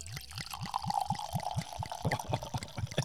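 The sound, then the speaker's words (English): Wine from a bottle in a brown bag glugs steadily into a glass, a rhythmic series of gurgling pulses with a rising liquid tone as the glass fills, with no talking. “Watch the drips there.”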